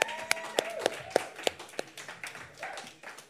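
Light applause: a steady run of sharp handclaps, about eight in quick, even succession, fairly soft and thinning out toward the end, with faint murmuring underneath.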